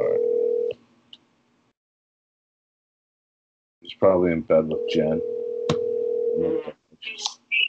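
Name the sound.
phone call ringing tone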